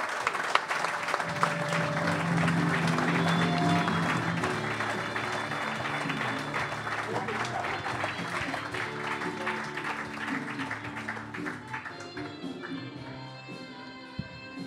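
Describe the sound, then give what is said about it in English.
A crowd gives a big round of applause, clapping steadily for several seconds, a dense, sustained patter of many hands, with faint background murmur and a few tonal notes mixed in. “So, ladies and gentlemen, a big round of applause,”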